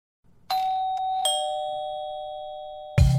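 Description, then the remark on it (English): A doorbell chimes a clear two-note ding-dong, the second tone slightly lower, and the notes ring on and slowly fade before a louder, lower sound cuts in at the end. “And I remember I wrote in bold in the email invitation, please ring the bell to get in, because I was hosting and I didn't want to have to keep checking my phone all night.”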